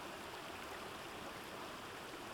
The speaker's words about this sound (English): stood in awed silence, watching the never-ending cascade of water.